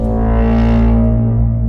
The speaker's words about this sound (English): And there's drum beats and that loud like foghorn. That's not quite a foghorn thing. It just sounds like the bwah.